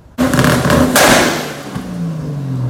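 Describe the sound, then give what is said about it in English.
The engine of a car that shoots flames suddenly roars to life and revs hard, with a sharp popping burst partway through, then its pitch slowly winds down while still idling loudly. “I hear you're looking for a war, and I have a car that shoots flames too.”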